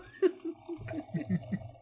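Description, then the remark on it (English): Wine pours from the spout of a box in a series of gurgling glugs, roughly seven uneven pulses over a couple of seconds, moderately loud with no talking. “Also, this is not a cork or a cap. It's a spout, so... So here we go.”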